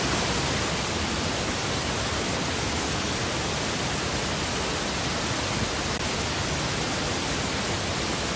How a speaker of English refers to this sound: I'm sure that's new, and hearing the pink noise is different here, but this will demonstrate the mixing point.